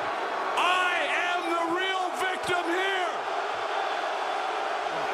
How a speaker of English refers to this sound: I sincerely hope that those boos are for Kenny Omega. See, this is how you control a crowd that's booing you.